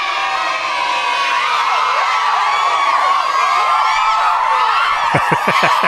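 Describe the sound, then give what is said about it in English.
A large crowd cheers and shouts outside a window, a dense, steady roar of many overlapping voices with excited yells, ending in a few quick, rhythmic whoops. “The crowd is getting wild. Those are the people outside my window.”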